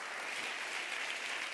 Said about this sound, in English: I'm done preaching. Clap your hands all over the house. Clap your hands.